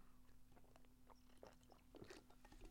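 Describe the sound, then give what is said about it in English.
Someone takes a quiet sip of a drink, with soft wet mouth clicks and a couple of brief slurping swallows over a low steady hum, with no talking. “I'm just taking a little sip.”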